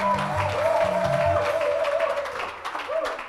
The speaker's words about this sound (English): Let us clap our hands and give God praise as he comes up. Hallelujah.